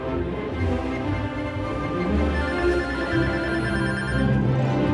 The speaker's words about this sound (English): The phone keeps ringing.